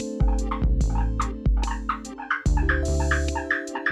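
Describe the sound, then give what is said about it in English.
A Borneo eared frog calls, a high-pitched rasping, buzzy tone broken by a quick series of sharp, loud chirps repeating steadily across the few seconds with no one speaking. “Whatever the case may be, these so-called ears are the better to hear the call of other Borneo-eared frogs, which is a high-pitched rasping sound followed by several loud chirps.”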